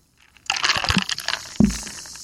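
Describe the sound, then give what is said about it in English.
Fizzing 7-Up soda crackles and hisses, bursting in suddenly and continuing as a bright, dense sizzle, with a couple of soft low splashes partway through. “You hear the sizzle?”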